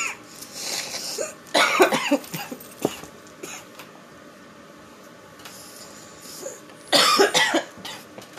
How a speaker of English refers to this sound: You just coughed for a minute straight.